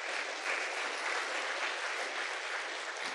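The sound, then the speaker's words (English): Sustained audience applause for year 5 and 6 pupils, a dense, steady wash of many hands clapping at once, holding an even level throughout with no voices standing out. “Give all of those guys a big round of applause.”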